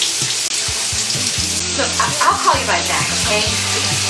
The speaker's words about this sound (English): I'm in the shower.